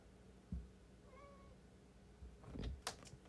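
A cat moves about and jumps down from a window: a soft thump, a faint brief meow, then a cluster of bumps, scuffs and a light landing, all fairly quiet with no talking.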